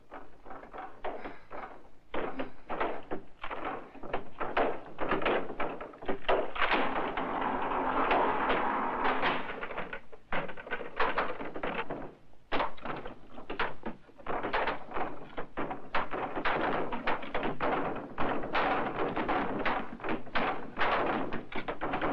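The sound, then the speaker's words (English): Heavy, relentless pounding and thumping against a door, loud, with dense overlapping blows that barely pause for the full stretch, as zombies try to burst through the door. “it sounds like the zombies are trying to burst through the door”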